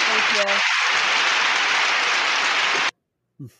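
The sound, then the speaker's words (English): A crowd applause sound effect played at the end of a quiz: a dense wash of applause, steady and loud for about three seconds, then cutting off abruptly. A brief voice is heard at the start and again after the clapping stops. “That's our crowd that we keep locked in our Mongo castle.”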